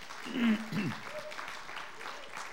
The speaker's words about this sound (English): And I want to say a big hello to those who watch us on the live stream. Could we have a round of applause for our live streamers?